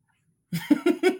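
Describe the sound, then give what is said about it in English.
A short fit of coughing: four quick, raspy, voiced bursts in rapid succession after a moment of silence, fairly loud, with no talking. “I cough there because I don't think it's going to be the same cats.”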